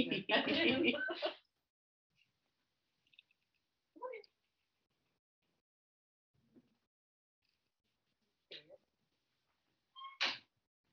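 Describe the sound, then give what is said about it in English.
A cat meows loudly at a door in one long drawn-out call, followed by several shorter, quieter meows spaced a few seconds apart. “I'm just going to open the door for Sure. The cat.”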